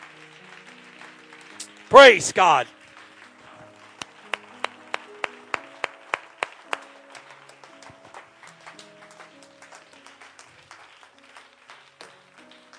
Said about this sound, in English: Praise God. Clap your hands to the Lord one more time and give him praise. Amen.